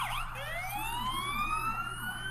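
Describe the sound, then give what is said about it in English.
An emergency vehicle's rumble siren is switched on with its buttons: its rising wail climbs steadily over a deep, continuous low-frequency rumble, loud, with no voices. “I've got a freaking rumble siren. You expect me not to hit those damn buttons?”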